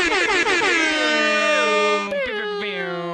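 A loud, blaring air horn holds one long, brassy tone for about three seconds. The pitch wavers and dips briefly at the start, with a short stutter near the end.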